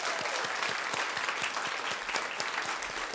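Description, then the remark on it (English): A crowd applauds the live theme music, a dense wash of many hands clapping with faint rhythmic thumps running through it, sustained at an even level with no voices heard. “A round of applause for our live theme music.”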